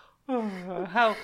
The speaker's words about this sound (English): I'm authentic. I did a real yawn.